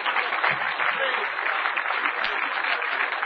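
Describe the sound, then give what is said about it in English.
A church audience claps and applauds steadily in praise to God during a morning sermon, a dense, continuous wash of many hands with no pauses, loud and even throughout, with faint voices mixed into the clatter. “Clap, shout, praise, wave.”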